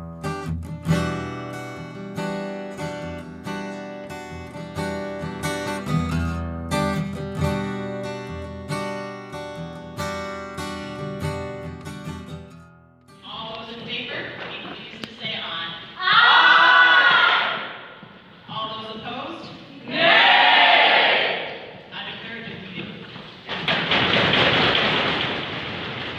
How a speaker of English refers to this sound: That is not question period in Ottawa or Queen's Park in Toronto, though the desk banging does conjure images of emotional elected officials. It's actually a clip from this year's sitting of Ontario Youth Parliament held in Kitchener.